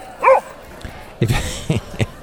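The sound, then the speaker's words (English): A boxer dog barks while out on a walk, with bats flying around: one sharp, high-pitched yelp, a short pause, then a quick run of four or five gruff, punchy barks. “I remember this recording of him barking was, there were these bats flying around.”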